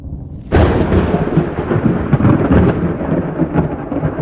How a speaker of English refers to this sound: Of course, these days, most of us no longer attribute breathtaking thunderstorms to angry gods like Zeus or Thor.